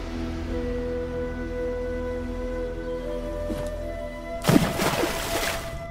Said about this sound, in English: And when he reached the middle of the ocean, he dove straight in.